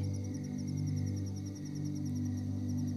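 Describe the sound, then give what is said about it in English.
Crickets and frogs chirp at night by a lake in a steady, rapid rhythm, high pulsing trills repeating evenly over a low, continuous droning hum, with no voices. “And while the crickets and frogs continue to sing out, the logs burn into magenta embers.”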